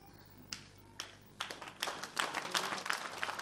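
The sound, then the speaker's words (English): An audience at a sermon starts clapping. A few isolated claps at first quickly swell into a dense, steady round of applause at moderate volume, with no voices over it. “Listen, stop clapping.”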